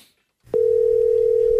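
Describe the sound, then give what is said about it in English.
A steady telephone dial tone on a recorded phone call switches on after a brief silence and holds at an even, loud pitch over faint line hiss until the end. “at the busiest time of your day, he's busy calling you for nonsense and recording those phone calls and then sending them to me.”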